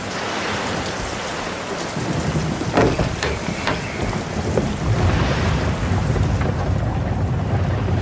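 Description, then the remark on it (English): Steady, heavy rain pours down outside a carriage on Christmas Eve, with a low, blustery wind rumbling underneath, loud throughout, with a few brief knocking clatters partway through and no voices. “Come in, out of the rain, Mary.”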